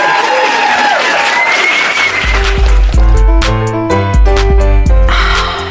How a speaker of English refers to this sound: Thank you very much to the audience for coming down. Please give yourselves and all of my guests a massive round of applause.